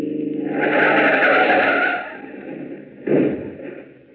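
On a long stretch of road, a car is run off the road into a ditch: its tires skid loudly in a long screeching slide, followed by a heavy thump and rumble as it lurches to a stop, with no voices.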